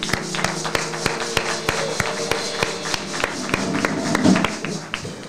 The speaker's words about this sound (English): Let's give another hand clap of praise this morning.